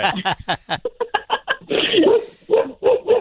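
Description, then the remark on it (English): A hound dog barks and howls in a quick series of loud bursts, ending in a drawn-out baying yelp before a few more short barks. “You got your hound dog.”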